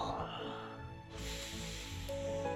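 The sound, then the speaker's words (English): A loud sniff from a great white tiger, a breathy rushing snort that swells midway and holds for about a second, over a faint tonal background. “interrupted, in turn, by the loud sniff of the great white tiger.”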